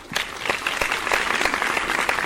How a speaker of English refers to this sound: Hey, give me a round of applause.